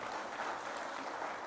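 A crowd claps steadily, a dense wash of many hands applauding at once, sustained and fairly loud without pause for the whole moment, with no voices rising above it.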